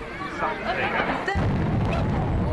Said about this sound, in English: it wasn't an accident. They were meant to detonate those towers, but you were close enough.